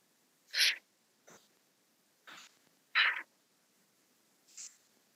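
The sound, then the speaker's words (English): Several short, breathy deep breaths in and out through the mouth, about five airy puffs in and out with brief pauses between them, fairly quiet, with no talking. “In through the mouth, out through the mouth.”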